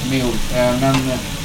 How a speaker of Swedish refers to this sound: Och då steker man tunna skivor av kött.